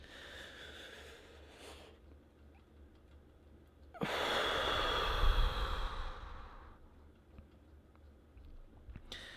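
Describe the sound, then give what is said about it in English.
A slow, deep breath drawn in and then let out, with a louder breathy rush in the middle and quieter airflow before and after; no talking. “Ain't nothing like breathing, bro.”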